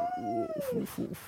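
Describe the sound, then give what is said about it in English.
A dog, Mahler, lets out a single short, high chirp-like bark that slides down in pitch, fairly clear, followed by a few soft, breathy bursts. “Mahler, little chirp today, nothing much.”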